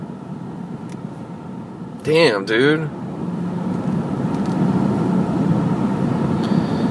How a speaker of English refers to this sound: Yeah, it's fucking packed. No accidents, just fucking traffic.